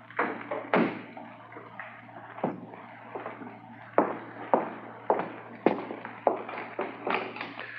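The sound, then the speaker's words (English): A door is bolted shut, with a series of sharp metallic clacks and wooden knocks in an uneven rhythm, some louder thumps among softer rattles, and no talking. “I was just bolting the door.”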